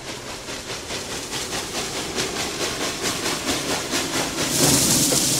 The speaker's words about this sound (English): Oh, this is it's like an old school train, isn't it?